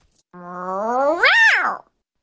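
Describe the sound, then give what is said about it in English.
A person voices a single drawn-out, angry cat meow, starting low and steady, then rising sharply to a strained peak before dropping off, loud with no other sounds. “Then the angry meow, but we only use this one on rare occasions because overall we're a very happy kitten family.”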